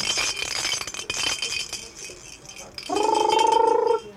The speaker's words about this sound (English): So out come the noisemakers.